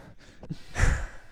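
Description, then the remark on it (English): A heavy breath blown right into the microphone, a brief inhale followed by a loud, rushing exhale with a rough, windy texture. No one speaks. “You guys want to hear me breathing?”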